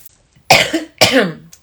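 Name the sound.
throat clearing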